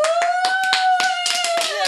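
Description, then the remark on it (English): A person claps for themselves, hands clapping quickly and steadily, about eight or nine sharp, bright claps in under two seconds, over a continuous high-pitched tone that holds throughout. “I'm clapping for myself.”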